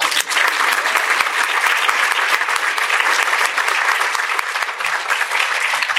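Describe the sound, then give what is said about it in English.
A sustained round of applause from a sizable audience for a panel, dense overlapping claps holding steady and loud for several seconds with no talking over it. “And now a round of applause for this awesome panel.”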